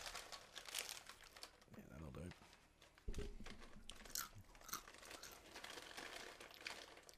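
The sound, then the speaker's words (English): A stale, 10-week-old guacamole-and-salsa flavored Doritos tortilla chip crunches loudly, a run of crackly, brittle bites and chewing spread over several seconds, with faint voices murmuring in the background. “Oh, I'll have one. And I'll crunch it right here.”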